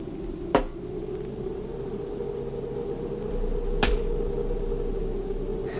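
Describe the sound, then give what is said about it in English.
A rock smacks against a wooden cabin with a sharp crack, and about three seconds later a second crack echoes back from the canyon, both over a steady low hum. “Just an echo from the canyon if you throw a rock against the cabin.”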